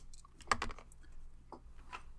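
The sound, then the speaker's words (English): A quick burst of small hard clicks and rattles as several eight-sided dice tumble together in a damage roll for a game, followed by a couple of fainter clacks as they settle. Fairly quiet, with no talking. “Dice. Come on, D8s.”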